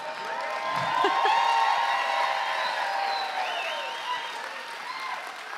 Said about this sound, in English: Thank you. Yes. Most of you are cheering.